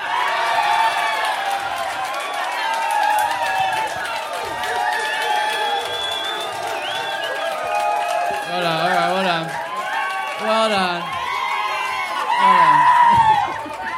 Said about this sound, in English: It got a 7-second round of applause. So, let's break the record. Let's go for at least 8 seconds.